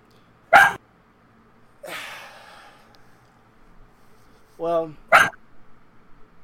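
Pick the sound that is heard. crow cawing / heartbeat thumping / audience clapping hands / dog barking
dog barking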